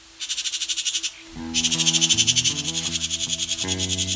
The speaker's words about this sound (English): Today I'm at a farm near St. George, Ontario, along the border of Brant County and the city of Hamilton. We'll be hearing more from these house wren, some red-winged blackbirds, and many other bird species on this lazy midsummer day.